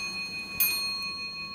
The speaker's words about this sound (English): All the clocks that come from the Foundling Hospital that still work, that chimed for the children and chimed for us.